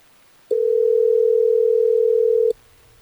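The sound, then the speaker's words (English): A phone line rings once on an outgoing call placed by radio hosts at Hot 101.5: a single steady electronic ring tone lasting about two seconds, clear and fairly loud, with no voices, leaving only faint line hiss afterward. “Well, let's try to get Leah on the phone so we can find out what's going on.”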